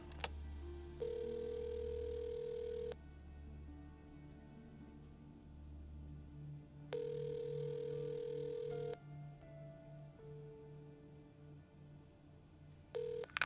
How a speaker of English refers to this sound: Incoming call to Zoe's phone.